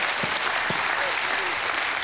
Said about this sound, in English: If you believe that, put your hands together and make some music with your hands to heaven above.